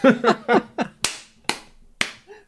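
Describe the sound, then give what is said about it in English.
A short burst of voiced laughter gives way to three slow, sharp claps from one man applauding himself, evenly spaced about half a second apart, each crisp and loud against quiet. “The second that came out of his mouth, I was like, he's going to applaud himself for that one.”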